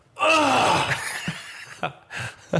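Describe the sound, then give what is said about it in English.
A loud, drawn-out gasp with a groaning, despairing tone, voiced to imitate the sound made on being locked out in a towel, then trailing off into a few short breathy catches and soft exhalations. “I actually let out a gasp of despair, I think.”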